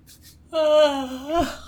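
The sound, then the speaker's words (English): A person yawns once, a short breathy intake swelling into a long, drawn-out voiced groan that lifts in pitch before trailing off. “Let me yawn.”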